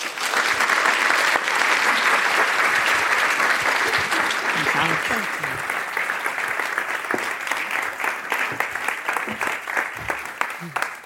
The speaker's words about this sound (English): Please join me in giving a round of applause to our speakers and welcoming them to the InForum stage.